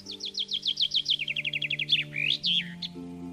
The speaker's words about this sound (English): Several springs I've been serenaded by a rose-breasted grosbeak perched in the tree while planting morning glories.